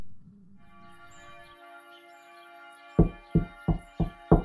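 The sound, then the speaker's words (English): Five firm knocks land at a steady pace, someone knocking at a door, after a stretch of low rumbling and a sustained humming tone. “Beyond the knocking in his skull, however, someone is knocking at the door.”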